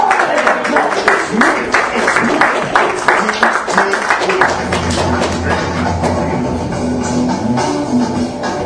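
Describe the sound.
An audience applauds a comedian with dense, steady clapping that fills the first half, then the claps thin out beneath a murmur of crowd voices.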